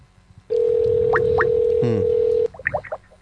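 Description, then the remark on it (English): A loud, steady telephone tone holds for about two seconds with a few quick chirps over it, then cuts off into a short burst of warbling electronic blips. “Whoa, somebody's calling us.”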